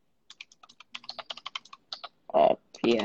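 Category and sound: household object, loud computer keyboard typing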